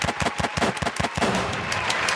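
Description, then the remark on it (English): Gunshot sound effects: a fast, loud burst of sharp cracks in steady rapid succession, like automatic fire, trailing into a dense crackling wash toward the end. No voices. “Gunshots for Johnny, clap all that shit.”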